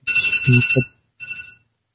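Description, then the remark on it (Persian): A mobile phone rings in two short electronic bursts, the first longer and louder with a voice mixed in, the second briefer after a pause. “زنگ آلا. موبایله.”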